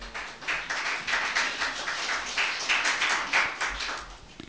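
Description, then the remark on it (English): An audience claps their hands together, a dense, steady patter of many overlapping claps that carries on for several seconds at moderate volume with no voices over it. “Give me a hand clap for doing that.”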